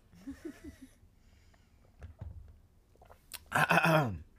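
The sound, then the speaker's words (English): Someone takes a sip of water: soft mouth clicks and faint murmurs, then a loud, raspy swallow and breathy exhale near the end. “Hold on, let me take the sip of water.”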